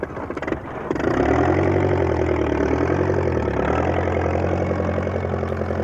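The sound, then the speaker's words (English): A farmer starts up his big tractor: the engine cranks over briefly, then catches and settles into a loud, steady diesel rumble, idling with no voices. “Farmer MacDonald got into his big tractor and started up the engine.”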